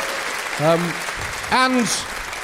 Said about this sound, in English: Give him a round of applause, there we are.